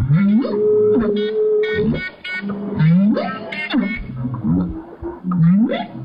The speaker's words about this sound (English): here's what the whale was doing